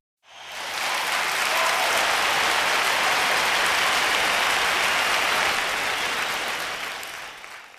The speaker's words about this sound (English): Thank you for all that canned applause. I really do appreciate that.